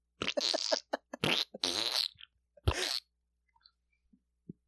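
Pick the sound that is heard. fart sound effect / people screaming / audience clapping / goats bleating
fart sound effect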